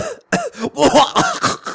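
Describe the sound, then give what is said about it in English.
A rapid string of about five or six harsh, throaty coughs, loud, with voiced rasping between bursts. A person is imitating a coughing fit. “I wasn't drinking now, but I'm not gonna drink when I'm coughing because it was something like this.”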